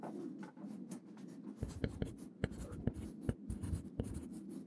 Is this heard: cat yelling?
no